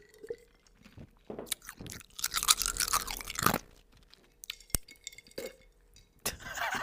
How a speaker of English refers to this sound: Okay, so I'm gonna cheers to that. Here's a little ASMR iced coffee for you.